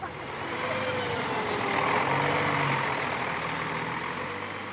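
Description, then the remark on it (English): A large bus engine drones steadily as the bus travels toward Castlebar, its low rumble rising slightly in pitch midway, with a broad hiss of road and air noise throughout and no voices. “Back on the bus, and Babs has an announcement to make.”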